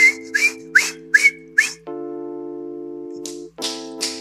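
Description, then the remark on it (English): A person whistles, imitating a teapot: a few short, breathy whistled bursts, then a long steady shrill tone, and a couple more bursts at the end. “It's kind of like the teapot. You know, it keeps whistling.”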